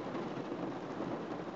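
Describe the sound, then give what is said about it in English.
Heavy rain pours down in a steady, dense, loud hiss, with no let-up across the short stretch and no voices over it. “Well, this rain is proper caning it down.”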